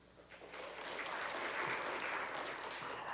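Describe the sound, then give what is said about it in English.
An audience breaks into applause after being asked to clap if they like going to the movies, building quickly from a few scattered claps into steady, dense clapping that holds at a moderate level for a few seconds. “Now, I want you to clap if you like to go to the movies.”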